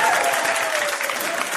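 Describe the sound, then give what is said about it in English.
A burst of audience applause, dense and steady clapping from a crowd that fills the whole moment at a fairly loud level, applause for the Daredevil director's cut. “What, are you looking for applause for the Daredevil director's cut?”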